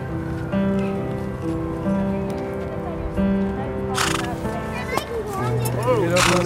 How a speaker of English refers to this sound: A group of boys on horses. With the large November sun behind them, for a moment they look almost iconic, like a beautifully composed shot, a western of young men and their horses.